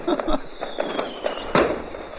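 Fireworks crackle and pop in a quick, irregular series of sharp bursts, with a louder bang near the end, all over a steady hissing background.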